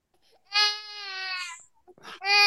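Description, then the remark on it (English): A toddler girl wails loudly, a long sustained cry followed by a brief sobbing breath and the start of another loud wail. “Oh no. Toddler doesn't like the pick.”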